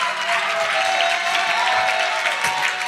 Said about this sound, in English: Listen, I want you to put your hands together for these salvations. Can we rejoice? Come on. Come on, come on. A little bit more. Clap it up. Come on.